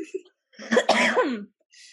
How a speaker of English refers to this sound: I'm sorry, I had to cough.